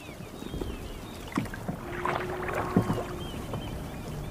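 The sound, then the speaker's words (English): A small boat being rowed out to a boat: oars dip and splash at an unhurried pace, with water sloshing against the hull and a faint creak of wood, no voices. “How can I get out to the boat? I can take you.”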